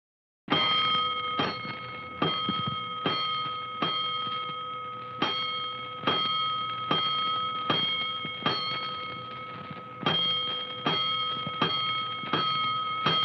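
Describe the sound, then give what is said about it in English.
A loud fire station alarm bell rings continuously, sounding five bells for a five-alarm fire, its sharp metallic strikes repeating rapidly in a steady rhythm and sustaining a bright, shimmering tone throughout, with no voices. “Five bells. Stand by all stations. Attention, all districts. A five-alarm fire.”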